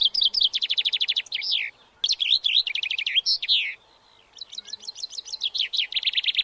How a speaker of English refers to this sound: I have a clip here of the chaffinch. We could see if we think that sounds like it.